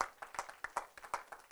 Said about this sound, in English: Let's clap our hands and give Him praise together. Hallelujah.